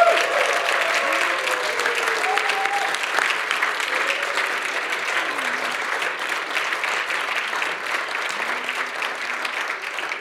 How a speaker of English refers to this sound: So first of all, why don't we just raise a massive cheer and a thank you to God for them.